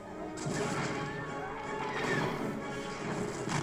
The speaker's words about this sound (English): Those were real explosions.